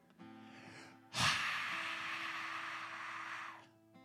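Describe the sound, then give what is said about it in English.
A loud, forceful breath blown out in one long exhale, starting with a sharp burst and rushing steadily for a couple of seconds before tapering off, over a faint background hum; someone demonstrating breathing on others. “And when he had said this, he breathed on them.”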